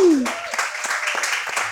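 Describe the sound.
A live audience applauds, a steady wash of many hands clapping with sharp individual claps standing out, holding at an even, fairly loud level throughout, with a brief voice sliding down at the start.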